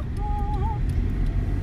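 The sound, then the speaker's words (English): Steady low rumble of a car on the road, heard from inside the vehicle, with constant engine and tire drone and a faint whistling tone briefly rising above it. “Yeah, we're zooming. Driving around.”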